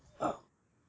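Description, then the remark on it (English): A single short, rough throat clearing, one quick raspy burst of a quarter second or so, with no talking around it. “Hold on, I gotta clear my throat one time.”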